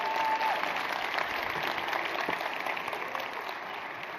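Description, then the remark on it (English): An audience claps as a woman comes up to be interviewed, a dense, sustained wash of applause that stays strong throughout, with no voices rising above it, easing only slightly toward the end. “Give her a huge round of applause as she comes up.”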